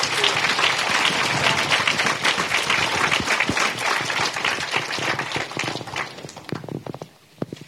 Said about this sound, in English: Can you all give our panelists a yes, applause?